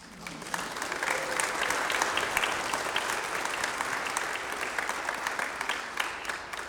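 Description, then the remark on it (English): A church audience claps to welcome people just dedicated to their vocations, a dense, even wash of many overlapping hand claps that stays loud throughout and trails off slightly at the end. “So please clap.”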